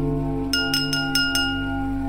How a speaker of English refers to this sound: Mike tapped a fork against his glass of champagne